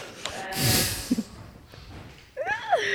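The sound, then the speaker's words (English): A person slurps into the microphone as a test: a wet, hissing slurp right up against the microphone, then a brief pause and a second sucking slurp that rises into a squeaky, whistling pitch. No one speaks. “We slurped into the mics multiple times.”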